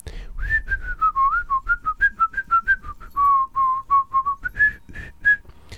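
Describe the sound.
A person whistles a lively, wandering melody of short separated notes, clear, carrying on steadily for several seconds without any talking.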